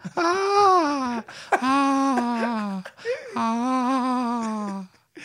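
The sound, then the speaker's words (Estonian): A voice imitates a whimpering baby in a train carriage with three drawn-out, wavering whiny cries, fairly loud, separated by short pauses. “isegi see väike beebi C-vagunis on nagu”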